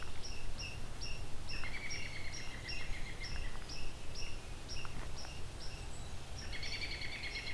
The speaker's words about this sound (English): American robin here too.